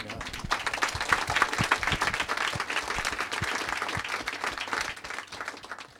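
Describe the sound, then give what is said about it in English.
A crowd applauds steadily for about six seconds, many hands clapping in a dense, even patter that holds at a fairly loud level before easing off slightly at the end. “I'll clap to that.”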